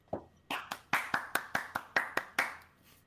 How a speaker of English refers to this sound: This was a very close victory for Candle Still Lit. Give him a round of applause in his first victory.